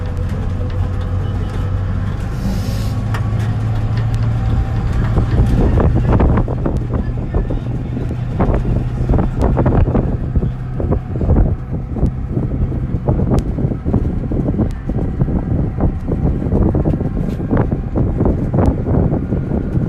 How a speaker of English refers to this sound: Flashing in the distance, that's still our guys, and that's nowhere near the end of this stream of vehicles.